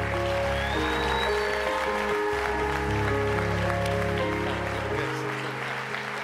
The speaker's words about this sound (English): Glory to God. Come on, let's clap our hands for King Jesus.